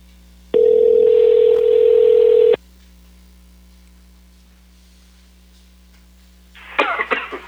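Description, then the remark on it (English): A single long ringback tone from an outgoing phone call placed for an interview, a steady electronic burst lasting about two seconds, followed by quiet line hiss and a brief rough noise like a cough at the end. “It rang a few more times over here.”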